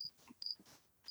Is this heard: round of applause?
no